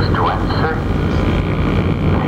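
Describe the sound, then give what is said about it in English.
A loud, steady roar of an airplane passing overhead close to the Oriental International Airport fills the whole moment, a broad rumbling wash with a faint high whine, while a voice is faintly audible beneath it. “because we're recording so close to the Oriental International Airport that we're getting some of these effects.”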